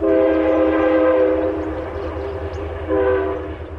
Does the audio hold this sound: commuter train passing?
yes